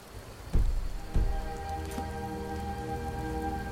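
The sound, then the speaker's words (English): Steady rain patters down continuously at moderate volume, broken early by two dull low thumps, with faint sustained tones humming underneath. No voices are heard. “I'm going to make a quick end card here while it's while it's raining.”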